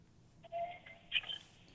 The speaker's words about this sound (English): Sorry, guys. My phone cut out there for a second.